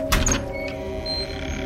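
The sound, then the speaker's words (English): A door opens with a brief clunk of the latch, followed by a thin, drawn-out creak of the hinges, moderately loud with no voices. “As the door creaked open, I couldn't see anything.”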